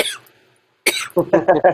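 A person coughs: one sharp, loud cough after a brief pause, followed by a quick run of three or four rhythmic hacking coughs.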